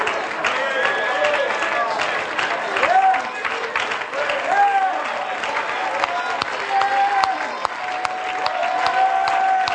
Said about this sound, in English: One more time, would you clap your hands and lift your voice and give God a shout of praise? Amen.